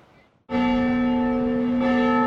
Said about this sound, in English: The bells have been ringing at the mission for more than two centuries.